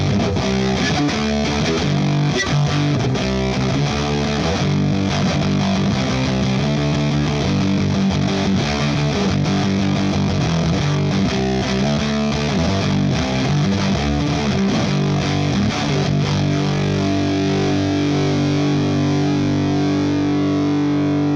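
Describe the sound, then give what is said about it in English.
Fuzz-distorted electric guitar, a Les Paul on the neck pickup with the volume knob all the way up, playing a slow run of single notes, each loud, gritty and sustained with a buzzy, saturated, garagey edge and slight sagging in pitch, with no talking over it. “If I just play a few single notes, you just hear it.”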